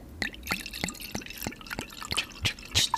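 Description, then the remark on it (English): Rosé wine poured into a glass, with a steady run of about ten bubbly glugs and splashes, evenly paced, rising slightly toward the end, with no talking. “Yeah, I didn't realize you were pouring up summer water.”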